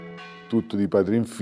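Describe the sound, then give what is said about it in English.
The deep, lingering hum of a large church bell, made by a bellmaker's great-grandfather, rings on for a moment up in its tower, then a man starts talking over its fading resonance. “We asked him to take us up one of those towers to hear this bell made by his great-grandfather.”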